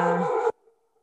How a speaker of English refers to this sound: As my dog barks, she wants to be a part of it too.